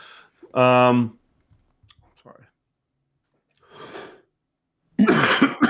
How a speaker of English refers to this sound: Yeah, sorry about the coughs, people. You're gonna hear a lot more of them because yeah. I just have like a fucking tickle.